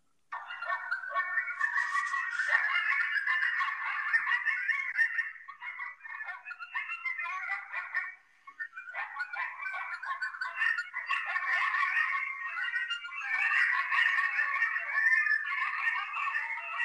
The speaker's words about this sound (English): And so because of their propensity to howl and yelp and cry, they are often serenading people all over North America. So right here, folks, this is what a coyote sounds like, or a pack of coyotes.